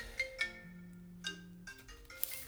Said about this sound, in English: My phone, unknown caller.